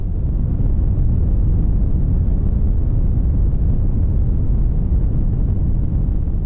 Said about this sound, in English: And my favorite here is a red noise. Let me isolate the red noise and play it a little loud so you can hear just how much of a thunderstorm this sounds like.